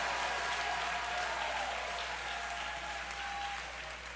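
An audience claps their hands and shouts to God in a dense, steady wash of applause, with faint raised voices mixed in, holding strong for about four seconds before easing slightly at the end.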